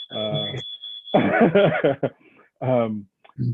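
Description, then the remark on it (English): A smoke alarm in a house, set off by someone, sounds a shrill, steady high-pitched tone for about a second while someone talks over it, then the talking continues without the alarm. “sorry if you can hear that, someone's just set off the smoke alarm in my house.”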